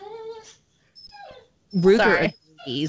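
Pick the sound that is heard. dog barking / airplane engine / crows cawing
dog barking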